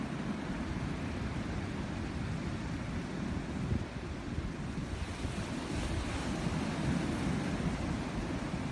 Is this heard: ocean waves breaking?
yes